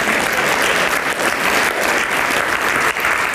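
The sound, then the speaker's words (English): An audience claps steadily for the whole stretch, a dense, even wash of many hands with no pauses and no one speaking over it. “We can clap that, but how many, you know, that's hard stuff.”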